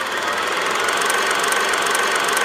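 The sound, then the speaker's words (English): A steady mechanical whirring of a kinetoscope film projector running, with a fast clattering rattle underneath that holds an even, fairly loud level throughout and has no voices. “So let's pull out the kinetoscope and take a look at the new film, Insidious, The Red Door.”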